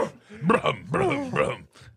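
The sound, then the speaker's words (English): Human voices imitate a dog, giving a few loud barking and whining yelps in quick succession, with a brief pause before a final softer one. “You guys are turning into dogs.”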